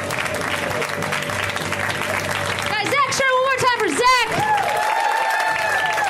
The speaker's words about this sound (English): Thanks for clapping even though you're hip comedy fans.